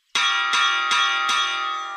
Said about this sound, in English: And to get people's attention, he used... music! A bell.